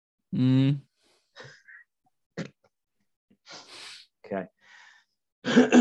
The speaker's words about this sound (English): Clear my throat before I end this.